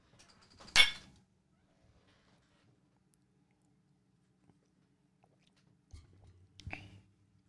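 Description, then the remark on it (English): A single sharp clink of glasses in a toast with shots of 92-proof whiskey, then near silence before a soft sip and swallow near the end. No one speaks. “That's a great shot of whiskey.”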